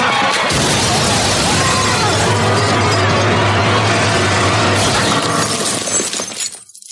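A film sound-design effect heard over a black screen at the end: a loud, sustained crunching shatter, like glass or bone breaking, grinding on for several seconds with a harsh, dense texture before cutting off abruptly into silence.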